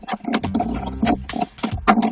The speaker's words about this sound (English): Right, okay. Stop pressing keys!